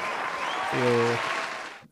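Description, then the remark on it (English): Steady applause, a dense wash of clapping lasting under two seconds, with a brief low droning tone cutting through the middle before the clapping fades out. “Give me some applause for your bet.”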